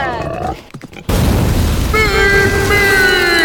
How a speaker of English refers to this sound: Holy cow! Pink Knight and Mr. Pickles just crashed through the building!